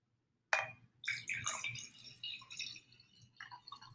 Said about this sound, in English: Wow, is that when you hear the wine with the glass?